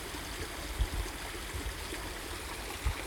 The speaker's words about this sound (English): Here we're next to a flowing creek.